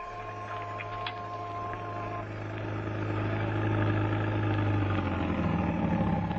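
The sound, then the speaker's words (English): A taxi's engine runs steadily with a low, continuous rumble, growing slightly louder and busier as it goes, heard from inside the moving taxi during a ride in New York. “You had to take a taxi. My taxi.”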